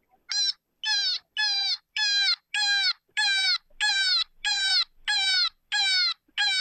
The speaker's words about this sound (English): That's a bird, and I think it's a raven. Nope. Cottontail in distress.